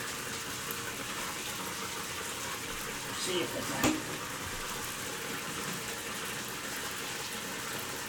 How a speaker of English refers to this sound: We're flooding the bath right now to see if Chappie's natural habitat has been relented from all the hair and the dirt and everything else here. And it's flowing much more freely right back into the pipe.